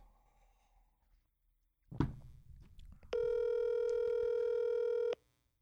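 A soft clunk like a handset being picked up, then a steady, buzzy telephone tone holds for about two seconds before cutting off abruptly, as a call is placed to a guest. No one speaks.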